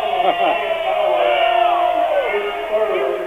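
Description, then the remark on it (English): The home crowd at a Corunna basketball game roars in loud, sustained protest at a referee's foul call, a dense wall of overlapping shouts and jeers that swells and holds steady throughout. “The Corunna crowd agrees with you behind us.”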